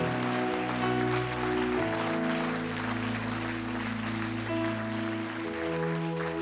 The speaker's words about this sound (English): Would you give the Lord another hand clap of praise right now?